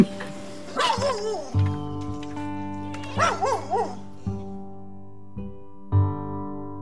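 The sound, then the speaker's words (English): Two bursts of yelping, whining dog barks, one early and one midway, rise over a steady droning tone that carries on underneath with a few low thumps. “I'll think, them dogs are never going to get fed today.”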